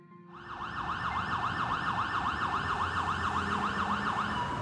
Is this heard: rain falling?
no